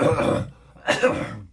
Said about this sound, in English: Pause for cough.